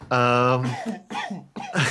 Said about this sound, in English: yes, appropriate coughing.